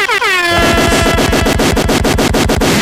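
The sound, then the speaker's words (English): A blaring air horn sound effect: one long brassy blast that quickly breaks into a rapid, stuttering string of loud repeated honks, with no talking. “Can I get like some air horns?”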